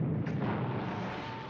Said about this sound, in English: Trucks had no radar. So what they did was relying on dead reckoning. Before they knew it, they're right into the cliff. Bang.